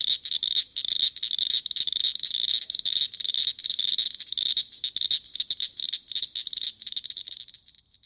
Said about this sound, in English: We're going to hear a little bit of what the cricket frog sounds like right now for context.